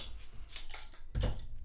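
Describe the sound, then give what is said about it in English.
Containers of wheat ale brewed with orange peel being cracked open: a few sharp metallic clicks and bright hissy bursts, ending in a louder, fuller pop-and-fizz, with no talking over it. “Yeah, well, let's crack these open.”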